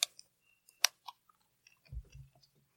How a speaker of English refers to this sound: Let's go ahead and do our cheers today. Yeah, clink, clink. And cheers. Take a little sip, sip.